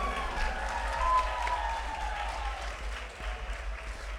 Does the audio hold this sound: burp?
no